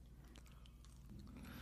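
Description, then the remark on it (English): Quiet chewing of a crunchy Reese's peanut butter cup with potato chips, with soft repeated crackles and bites over a low steady hum, no talking. “It's just a crunchy Reese cup.”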